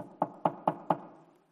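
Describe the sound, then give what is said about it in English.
Four quick, evenly spaced, firm knocks on Herod's wooden door, each with a short hollow ring, followed by quiet. No one speaks. “Herod hears a knock on his door.”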